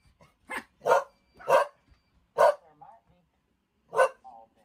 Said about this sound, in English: Wait, that's him barking, right?